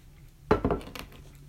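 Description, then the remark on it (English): Glasses clink together in a toast, a few bright, ringing knocks in quick succession, followed by a lighter clink, with no talking. “Alright, clinking, boys, clinking.”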